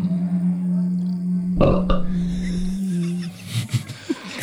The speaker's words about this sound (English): There's a rating of 2. Was that a belch?